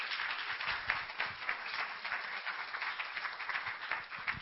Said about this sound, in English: Praise the Lord. Hallelujah. Let's clap our hands to the Lord if we believe the word of God.